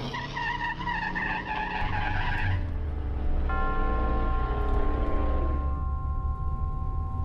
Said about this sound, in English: After I got the car back on the road again, I felt like a fool.